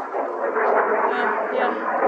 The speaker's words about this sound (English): And the really loud airplane that's flying so high we can't see it. Oh, there it is.